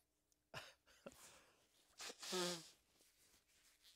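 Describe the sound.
A single loud sneeze from a person on a TV broadcast bursts out after a couple of short sharp breaths, ending in a brief voiced, nasal tail before falling quiet.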